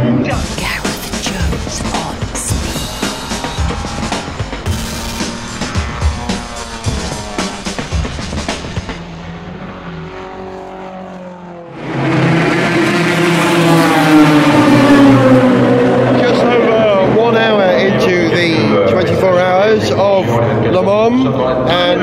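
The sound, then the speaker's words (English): Endurance racing cars, led by the number 8 Toyota Gazoo Racing car driven by Sebastian Buemi, with the second Toyota and Porsches following, roar past one after another, engines whining up and down in pitch, with a sudden louder surge midway as cars sweep by fast. “Car is the Toyota Gazoo Racing, currently driven by Sebastian Buemi.”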